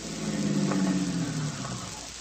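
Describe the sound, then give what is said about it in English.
A car engine idles with a steady low rumble and a faint mechanical hum, holding fairly constant for a couple of seconds with no voices, after the car is stopped in a street. “Stop the car, Vitamin.”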